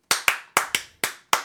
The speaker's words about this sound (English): Was that me clapping or her clapping?